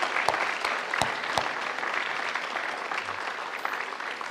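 An audience claps for presenters after their morning presentation, a dense wash of hand claps with a few sharper individual claps standing out early on, holding an even, moderately loud level throughout with no voices.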